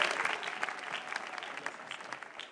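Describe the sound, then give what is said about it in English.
An audience claps steadily to welcome a minister, a dense wash of many overlapping handclaps with no clear rhythm, fairly loud and sustained throughout the short burst. “Please welcome him with a clap.”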